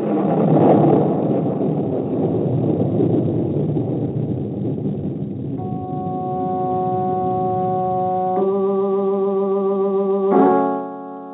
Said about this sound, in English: We saw it, Father. Lightning in the skies and the sound of a thunderbolt.